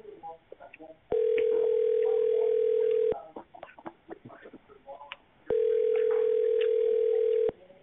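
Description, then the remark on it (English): Two long, steady ringback tones sound through a phone line, each lasting about two seconds with a pause between, as a call rings unanswered. Faint background noise fills the gaps. “Well, I guess that person ain't answering their phone.”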